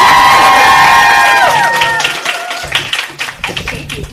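A panel event audience cheers loudly to encourage nervous panelists, with high-pitched shouts and whoops that trail off after about two seconds, giving way to scattered clapping and a few lingering calls.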